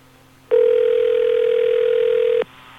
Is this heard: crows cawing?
no